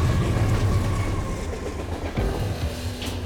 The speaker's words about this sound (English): The low rumble of incoming trains shook the walls around her.